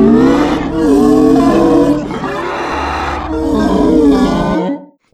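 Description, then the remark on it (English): A voice imitates a monster's shriek: a loud, raspy, roaring cry held for about four seconds, dipping briefly in the middle and surging again before cutting off abruptly. “And it is dripping with this dark ooze as it boom, boom, boom, lumbers across the ground, always just shrieking out with this.”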